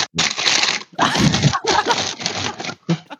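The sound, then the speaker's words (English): Loud crinkling of a snack bag in repeated bursts as someone gets food, the plastic rustling and scrunching continuously for a few seconds with brief pauses between handfuls. “There's so much rustling going on, dude.”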